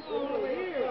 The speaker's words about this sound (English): For our purpose tonight, of course, it's Santa Claus Lane and Vine Street. And there's a whole crowd of people right out here in the street shouting up to Mickey and Judy and waving. Maybe you can hear some of these people. I'll hold it up.